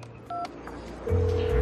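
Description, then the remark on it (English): A single short telephone keypad beep as a woman calls her own workplace, then after a brief pause a steady, louder low phone tone starts and holds to the end, with no voices present. “the moment when she calls up her own workplace and the woman like answers”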